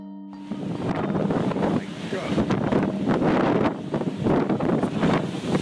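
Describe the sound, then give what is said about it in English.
Roaring, gusty wind from Hurricane Sandy buffets the microphone over crashing surf at a beach town on a barrier island, a loud, continuous rush of storm noise with surging waves and no clear voices. “When Hurricane Sandy came, people decided that they evacuated the year before, and so everybody decided to just stay in and put sandbags in front of the door.”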